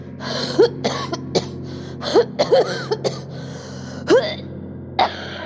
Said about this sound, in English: He held my hair as I coughed, tucked it behind my newly formed ears as I cleared the thick mucus from my body.